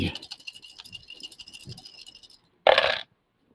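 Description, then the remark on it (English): Eleven dice rolled for a game move rattle and clatter across a hard surface in a quick stream of small clicks for about two seconds, then after a brief pause a short, louder burst of noise. “That's that dice.”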